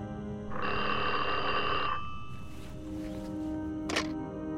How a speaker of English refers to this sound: If Leslie White's phone ever rang after midnight, something was seriously wrong.